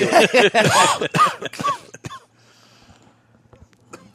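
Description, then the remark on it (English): A rapid fit of harsh, loud coughing, six or seven hacking bursts packed into about two seconds, then trailing off into near silence. “That coughing wasn't me for a change.”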